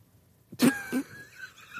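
A sneeze attack: two sharp, breathy bursts in quick succession, the first louder, then a faint lingering trail of sound. No talking is heard.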